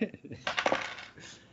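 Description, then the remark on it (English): A pair of dice clatter and tumble across a hard tabletop, a quick burst of clicking rattles that settles within a second or so, moderately quiet, landing on a 5 and a 6. “Yeah, we'll say it's a Dove's roll with two dice.”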